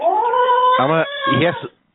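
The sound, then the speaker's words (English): A cat meows in a few drawn-out, wavering cries, one running straight into the next, with a thin, muffled quality as if heard over a phone line. “Because the cat has to leave.”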